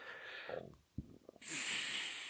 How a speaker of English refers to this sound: That was clearly a Canadian burp.